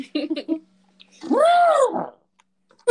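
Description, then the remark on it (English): A person trumpets like an elephant: one loud, drawn-out vocal call that rises in pitch then falls away, after a few brief mumbled speech sounds. “That was me being an elephant.”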